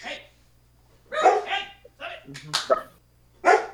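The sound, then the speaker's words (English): A dog barks several times in short, sharp bursts, fairly loud, with brief pauses between them and a voice also audible. “Bark, bark.”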